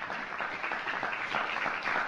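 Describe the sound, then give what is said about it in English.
A canned applause sound effect played from an emoji soundboard website meant for classroom debates: steady, dense clapping from a crowd, sustained at an even loudness for about two seconds with no voices. “So let's say you want to clap.”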